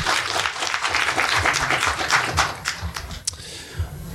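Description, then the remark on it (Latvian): Steady audience applause with dense, overlapping clapping that continues for several seconds, then thins to a few scattered claps with a sharp final clap near the end; faint voices murmur underneath. “Aplausim.”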